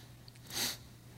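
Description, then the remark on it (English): A single short sneeze during a sermon bursts out as a quick, breathy hiss, then fades, leaving a steady low hum underneath. “Gesundheit.”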